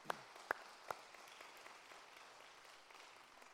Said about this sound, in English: I think we ought to give God a hand clap for that.